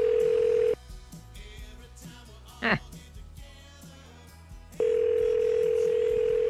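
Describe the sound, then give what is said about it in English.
A steady, loud telephone dial tone hums, then cuts out for several seconds of faint clicks and muffled voices with one sharp electronic blip, before the dial tone returns, as a phone call is placed to the business Discount Wheelies. “All right, we're going to give Discount Wheelies a call.”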